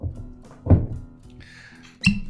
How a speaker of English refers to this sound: That pop, that sound, a little pour. Let's pour it, see if we can hear it.